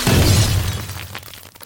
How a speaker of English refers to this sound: It collapsed to the floor with a resounding crash, the picture tube shattering into shards of glass and phosphor.